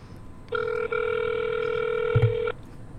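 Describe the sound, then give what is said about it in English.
A phone line ringing: a single steady, buzzing ringback tone lasting about two seconds, heard clearly through the receiver, with a faint low bump near its end and no one talking. “But basically, while it's ringing”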